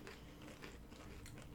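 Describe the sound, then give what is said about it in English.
Someone crunches on a nacho-flavored bean chip, a quick series of crisp, brittle bites and chews repeating unevenly over a second or so, with no talking. “I hope it picked up my crunch. Oh, it did. It picked up your crunch, too.”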